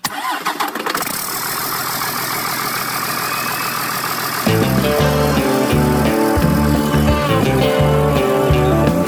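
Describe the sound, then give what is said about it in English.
A big truck engine cranks over and rumbles to life, then runs with a loud, steady roar; about halfway through, a heavier rhythmic, tonal layer comes in over the engine. No one speaks. “Let's go for a ride in this big old truck.”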